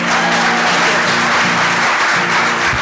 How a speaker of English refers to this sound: I'm very glad that she could come here tonight and break our hearts. Please, let's give a round of applause